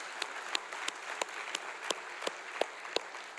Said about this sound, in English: yeah, we can clap again. That's all right.